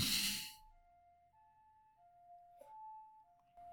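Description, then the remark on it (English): An ambulance siren outside wails in a two-tone pattern, switching steadily between a higher and lower pitch. It sounds fairly quiet and plays on its own after a brief burst of noise at the start. “I got a ambulance outside”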